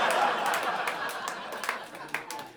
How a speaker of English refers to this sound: Two applause breaks. Amidst all the groans. Yeah. Yeah. What it is I am losing them and then winning them back. And they are so surprised, they cannot help but clap.